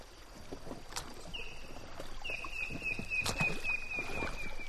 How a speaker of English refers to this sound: It's better when we're out paddling on the water. The river is fast-flowing and muddy, but gentle for now. Altogether, there are 12 of us traveling in 3 inflatable rafts and 3 kayaks.